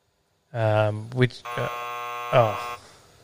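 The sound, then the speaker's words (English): A voice imitates a game show buzzer with a loud, nasal buzzing drone, broken into a few bursts and then a sustained tone of over a second, alone, made in answer to a quiz question. “I got confused between my name and my buzzer.”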